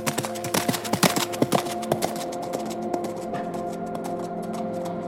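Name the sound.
horse hooves clip-clopping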